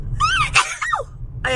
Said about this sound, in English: Anyway, I'm not editing that sneeze out because people sneeze. What do you want to do? I hope I didn't pop your ears. I'm sorry.